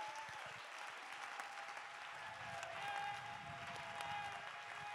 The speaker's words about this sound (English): Everybody in the house, clap your hands for 15 seconds.